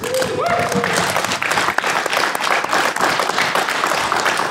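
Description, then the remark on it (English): Steady, dense applause from a large audience at Comic Palooza greeting a Q&A panel guest, many hands clapping at once in a continuous, even roar, with a faint voice briefly audible at the very start. “Everybody clap.”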